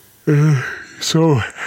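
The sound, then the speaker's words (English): Two drawn-out, breathy tired yawns, each sliding downward in pitch, with a sharp intake of breath between them; fairly loud, with no words spoken. “That's all I have to contribute other than my tired yawning.”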